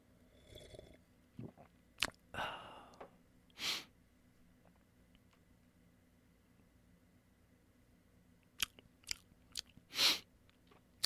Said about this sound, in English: So I'm going to make this extra couple seconds awkward. I'm just going to sip, and that's it.